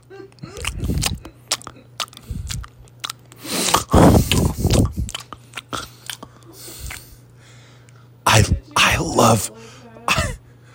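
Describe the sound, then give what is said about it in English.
Wet chewing and crunchy bites on chocolates for ASMR, in irregular bursts with short pauses, loud, with a faint steady hum underneath. “I'm chewing on chocolates.”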